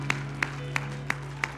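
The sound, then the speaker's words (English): A church audience claps in praise after a prayer, a steady, even beat of five sharp claps in quick succession over a low continuous hum, with no voices. “Clap your hands to the Lord and let's praise him for answered prayer.”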